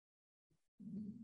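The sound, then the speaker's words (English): A quiet, low gurgling rumble of a hungry man's stomach growling, a brief burp of sound followed by a longer half-second growl, with no talking. “That's my stomach growling like a motherfucker.”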